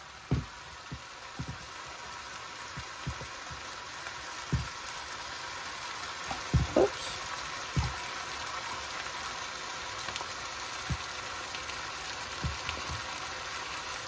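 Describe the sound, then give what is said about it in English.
Steady sizzling from a hot pot, with scattered crackles and pops and a brief louder hiss and surge midway, as a glass of water from a pitcher is poured into the pot. No one speaks. “one glass of water. I'm going to put my pitcher and my glass down because I want to give it a stir now with the water.”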